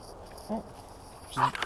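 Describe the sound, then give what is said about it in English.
A puppy growls in two short bursts, one brief and a slightly longer one a second later, fairly quiet, with no talking. “Are you a vicious little powder puff?”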